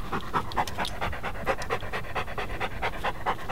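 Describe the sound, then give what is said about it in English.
A dog named Timbuktu pants rapidly and steadily, a quick rhythm of breathy huffs repeating throughout with no pauses and no other sounds. “This is my dog, Timbuktu.”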